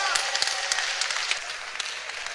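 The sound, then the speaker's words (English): A crowd claps for themselves together in a dense, steady patter of many overlapping hand claps, fairly loud and continuous, with a faint murmur of voices underneath. “Clap your hands for yourself.”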